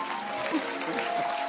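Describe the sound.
A crowd at a conference service applauds steadily to welcome a bishop about to preach, a dense wash of clapping that holds at an even, fairly loud level throughout, with faint voices and cheers mixed into the sound.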